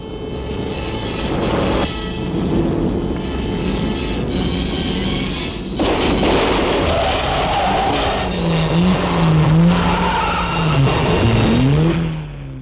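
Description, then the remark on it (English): Loud car noise with a roaring engine as a rental car's tyres are blown out by a crude stinger-like device thrown across the road, then wavering, warbling squeals of tyres skidding across the road, sustained for several seconds with no voices. “a Stinger is a device which is thrown across a road, which blows out tyres of a car hurtling over it.”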